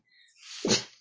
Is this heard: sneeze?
yes